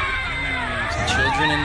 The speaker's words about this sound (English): and screaming.